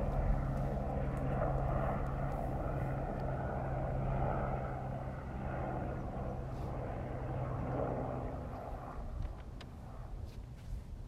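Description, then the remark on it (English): A helicopter drones steadily overhead for the whole stretch, a continuous low engine rumble with a humming tone, holding even in loudness, with no voices. “It's actually good it's not a regular day, because usually there's so many helicopters kind of like, hold for a helicopter.”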